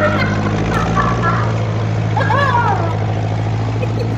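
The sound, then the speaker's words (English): A tractor engine rumbles steadily and loudly from start to finish with a deep, constant drone, while faint muffled voices come and go over it. “I've just got to climb up on this tractor here, he said, doing his audition.”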